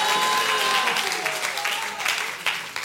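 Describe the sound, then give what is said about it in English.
An audience clapping for the Lord during a church sermon: steadily, a dense wash of many hands applauding together with faint voices and a few scattered shouts mixed in, holding strong throughout before easing slightly near the end. “Clap for the Lord.”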